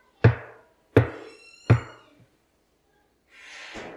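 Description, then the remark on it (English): Three heavy, booming knocks on a large wooden church door at a new bishop's installation service, evenly spaced about a second apart, each ringing briefly in a reverberant space, followed by silence and then a soft rustling hiss. “Our church wouldn't normally send me on a 7,000 kilometre round trip to hear someone knock on a door.”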